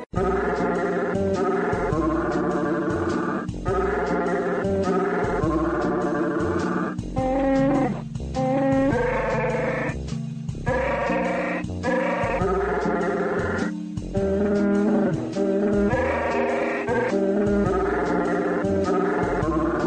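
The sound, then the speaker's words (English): A Wookiee-style growling voice, presented as Chewbacca, warbles through the Christmas carol Silent Night, loud throaty moans rising and falling in sustained, melodic phrases over a steady low backing, with no ordinary speech. “And in celebration of the holiday season, we would like to present that beautiful holiday favorite, Silent Night, sung by that wonderful soprano, Chewbacca.”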